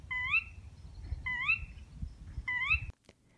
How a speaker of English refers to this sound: And some more bird sounds.